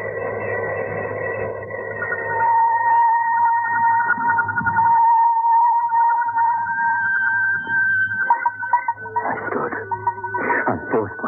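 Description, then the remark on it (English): A lift alarm bell, set off by pressing the alarm button inside the lift, rings continuously as a steady, shrill electronic tone over a low hum. It breaks into choppy, stuttering bursts in the last few seconds. No one speaks. “These things have a button to press. Rings a bell and the caretaker's flat.”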